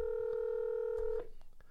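A phone rings with an incoming call from Atlanta: one steady, sustained electronic tone lasting just over a second, then cutting off abruptly. It is clear, with no talking.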